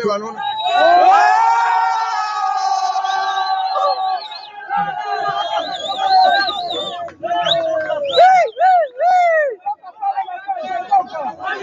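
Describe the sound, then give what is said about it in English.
A crowd cheers and whoops with bursts of laughter, loud, high voices rising and falling over a steady hubbub of excited chatter. “Listen to people cheering and like laughing too.”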